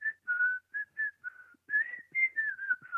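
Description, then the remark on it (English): A person whistles a lively, meandering tune with short bouncy phrases and sliding notes, clear, improvising a jazzy melody with no talking. “There's a bit of jazz there for you. Nice. I was just making it up as I go along.”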